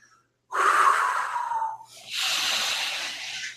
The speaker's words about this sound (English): Inhale. Exhale, slow your breathing down now. Inhale, slower. Exhale, slower.